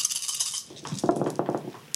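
A handful of twelve dice clatters and rattles together as it is rolled, a burst of bright clicking and tumbling that settles after a couple of seconds, moderately loud with no voices.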